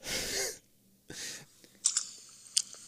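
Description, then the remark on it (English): A wet footsteps sound effect played from a phone: two broad, squelchy sloshes followed by a few sharp, smacking clicks, somewhat like chewing. No one talks over it. “Would you stop pulling up noises on your phone? What even is that sound? Wet footsteps.”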